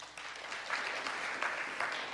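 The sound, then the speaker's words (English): An audience claps together in a steady, dense patter that holds for a couple of seconds, with no one speaking over it, in answer to being asked who eats on the run in their car. “How many of you eat on the run in your car or you grab something? Will you clap?”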